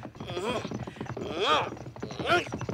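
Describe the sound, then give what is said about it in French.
Horse hooves clip-clop in a steady rhythm through the short stretch, mixed with voiced, rising-and-falling vocal sounds that swell three times over the trotting. “Mon cheval s'arrête.”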